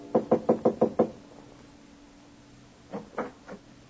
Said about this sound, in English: Walk down the carpeted hallway. Rap on the panel door.